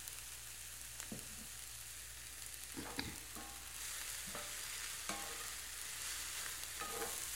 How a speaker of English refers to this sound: It's going to take a little while to cook. The sizzling now is when the cabbage is losing its water.